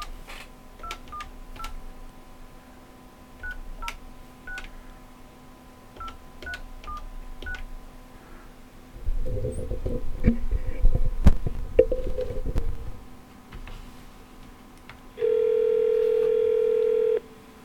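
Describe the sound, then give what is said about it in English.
A telephone is redialed after a dropped call: a rapid series of keypad tones beeps in quick bursts over a steady dial hum, then a muffled rustling thump, and finally a loud sustained tone at the end. “I don't know what's happening with the phone here, but let's try it one more time.”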